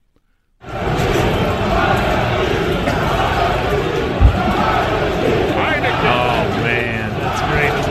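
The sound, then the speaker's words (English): A dense, steady roar of a large stadium crowd at a game in Washington, many voices blending into continuous loud noise with scattered shouts rising above it, starting abruptly and holding for several seconds. “Listen to the crowd.”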